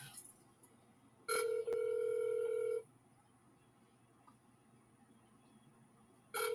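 A telephone ringback tone sounds on an outgoing call to the Mar-a-Lago Country Club: a steady electronic ring of about a second and a half, a pause of several seconds, then the next ring beginning, heard clearly through the line.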